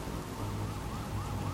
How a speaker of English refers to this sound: There were emergency vehicles and sirens going off. It really felt like a war zone to me.